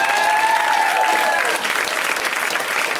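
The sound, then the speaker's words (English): Steady, loud applause from an audience at a Cameron Esposito comedy show, clapping for the group in the back, a dense wash of clapping that holds for the full stretch, with a brief whistle or voice tone in the first second and a half. “Let's also clap for them.”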